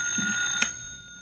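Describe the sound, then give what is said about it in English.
A telephone ringing at Shannon's place, a steady, bright metallic bell tone that holds for over a second, with a brief sharp click midway and no voices. “That's the telephone.”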